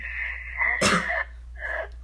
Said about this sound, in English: Bless you! That was actually a cough.